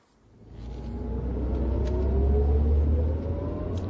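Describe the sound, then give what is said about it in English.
A car engine runs steadily while driving, a low rumbling drone that rises from quiet to a sustained hum with faint pitch shifts as it moves along, no voices present. “My car's just up here.”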